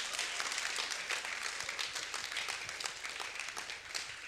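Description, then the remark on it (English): A crowd applauds steadily, many hands clapping at once in a dense, bright patter that holds at an even loudness for several seconds without any voices rising above it. “Or if you are clapping, clap properly.”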